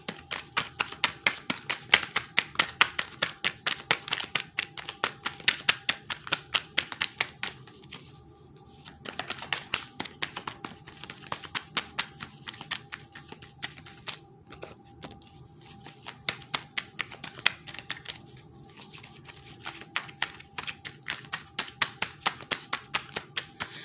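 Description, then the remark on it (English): A large deck of almost 100 cards being shuffled, a steady stream of rapid papery riffles and snaps with brief pauses between bursts, going on for about twenty seconds with no talking. “A little longer, like you hear, I'm shuffling.”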